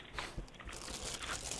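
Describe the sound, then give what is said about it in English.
Steady crunching of dry toasted oat cereal, a generic version of Cheerios, being chewed, with a continuous run of crisp, crackly bites that stays moderately loud and uninterrupted by talk. “Toasted oats, the generic version of Cheerios.”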